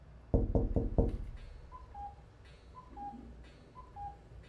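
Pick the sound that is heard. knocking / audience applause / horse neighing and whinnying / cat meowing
knocking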